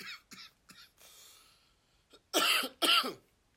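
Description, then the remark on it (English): A series of coughs: a few short, lighter hacks and a breathy exhale, then two loud, harsh coughs in quick succession near the end. “Yeah, I'm coughing.”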